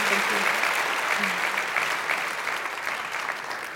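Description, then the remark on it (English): An audience applauds the evening's guests who told their story, loudly and steadily, a dense wash of many hands clapping at once that stays strong for several seconds before easing slightly toward the end. “Please, please, please give them a huge round of applause.”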